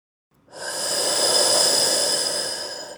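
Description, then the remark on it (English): A single long, loud breath drawn through a scuba regulator during a blue-water dive in open ocean, a harsh airy hiss with a metallic whistle that swells in after a moment of silence and holds steady for over two seconds. “Breathing heavily into my scuba regulator, I started talking to myself on our first blue dive.”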